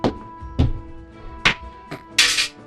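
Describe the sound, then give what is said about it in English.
A die rolled across a room clatters and bounces, giving five irregularly spaced hard knocks against wall and floor, the last a brighter, longer rattle, and lands in a chimney. No voices are heard. “That noise was that dice going across the room and bouncing around.”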